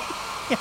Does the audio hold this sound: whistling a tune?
no